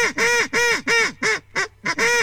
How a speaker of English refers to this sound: When the dogs were all standing on the bank, a duck landed right in the middle of the pond and started to squawk like mad.